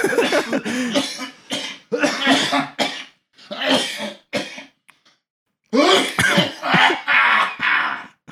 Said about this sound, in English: That was like a pirate cough.